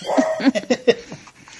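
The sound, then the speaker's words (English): A female dog barks in a quick series of short, sharp yaps, about five in a row, moderately loud, with no one talking over them. “Lord, what is she barking at?”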